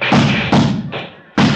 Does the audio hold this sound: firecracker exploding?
yes